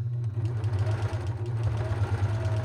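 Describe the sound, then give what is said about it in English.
A coverstitch machine hums steadily as it sews a hem on DBP fabric from LA Finch Fabrics, its low motor drone pulsing with a fast, even rhythm throughout, with no talking over it. “And I've just turned it over, and my cover stitch is catching it nicely.”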